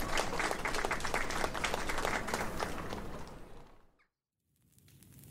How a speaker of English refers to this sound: They all clap appreciatively.